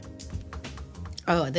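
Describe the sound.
A fingernail lightly tapping in a recording studio, several quick crisp clicks at an uneven pace, fairly soft, then a voice speaks briefly.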